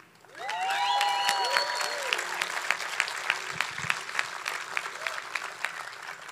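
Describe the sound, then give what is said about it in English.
Steady audience applause swells quickly and holds as a dense wash of clapping, with individual sharp claps standing out as it thins slightly toward the end, plus a few faint whistles early on. “So it would make me super fucking happy if everybody clapped it up for each other.”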